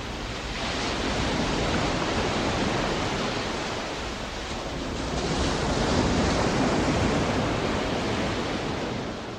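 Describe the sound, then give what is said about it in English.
Steady, full-bodied ocean surf rolls and hisses onto a shore, swelling gently in slow surges with no voices, a dense continuous wash of breaking waves; a recording edited and manipulated on an early computer. “They kept working until they felt like it captured the majestic sound and feel of the ocean.”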